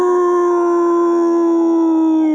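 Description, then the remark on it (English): A person imitates a wolf howl: one long, loud, sustained note, steady in pitch and sinking slightly at the end, with no other sounds around it. “Wolf howled.”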